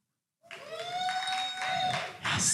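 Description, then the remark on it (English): An audience breaks into steady applause that starts abruptly and holds for a couple of seconds, with a drawn-out cheer riding over the clapping. “Give us a round of applause if you've ever heard of us.”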